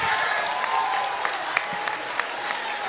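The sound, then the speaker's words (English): An audience claps in a steady, dense wash of applause lasting a few seconds, with a handful of sharper individual claps popping out above the crowd noise. “Don't clap for that goofy ass nigga.”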